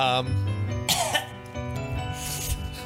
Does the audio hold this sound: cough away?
yes